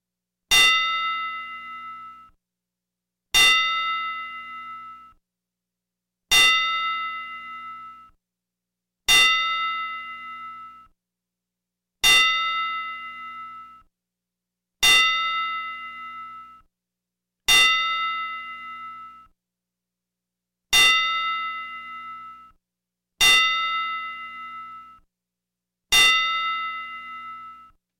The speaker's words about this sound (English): And rest in peace, Bob Butch Miller. And I'm going to give you a 10-bell salute.